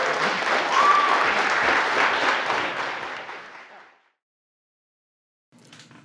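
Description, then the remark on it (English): A crowd at a meetup applauds after a talk in a steady, dense wash of clapping that holds strong for a few seconds, then fades out into silence before a brief faint noise at the end. “All right, let's give a round of applause.”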